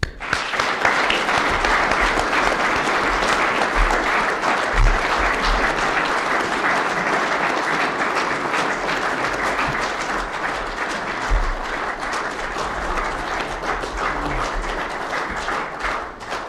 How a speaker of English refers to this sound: I call upon everybody, and I'm sure there'll be no slowness in this, to, with me, applaud you most strongly for a wonderful lecture.